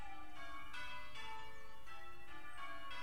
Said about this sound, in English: No, the bow bells. Listen.